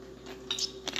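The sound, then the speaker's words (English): A quiet sip of water: a couple of short, soft slurping bursts with faint wet mouth sounds, over a low steady hum and no talking. “Let me get a sip of my water.”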